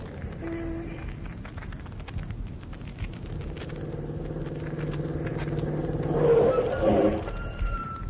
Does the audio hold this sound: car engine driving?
yes